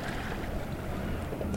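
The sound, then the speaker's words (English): A steady, low engine rumble from a boat out on the water, continuous and moderately distant, with some wind noise across the microphone and no one speaking. “It looks like a relatively larger boat that might be a ferry coming in.”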